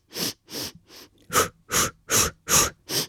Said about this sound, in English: And for the first song, I do a breathing exercise, and I do in for four and then out for four like this.